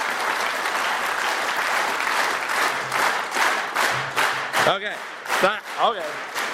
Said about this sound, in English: I want you to all start clapping normally, and then when I say synchronize or lock up, without any help from anyone except yourselves, let's just all clap synchronously together. So when I say that, let's go. So everyone just clap. Okay, synchronize.